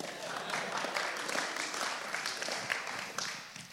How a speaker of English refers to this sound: You'll have to clap. I know it was good.